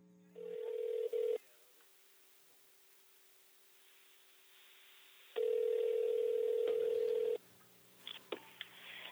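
Telephone ringing heard down a phone line as a call is placed to a family member: two long, steady electronic ring tones separated by several seconds of quiet line hiss, with a brief clicky tone at the start and faint clicks near the end.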